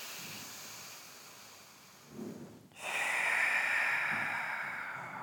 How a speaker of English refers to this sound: And exhale, contracting the muscles in your rib cage all the way down into the deep, deep, deep abdominals and your back down to the floor. 3 more times. Really feeling that exhalation here.